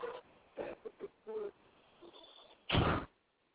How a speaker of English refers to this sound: sorry about all the background noise, but doors open and closing.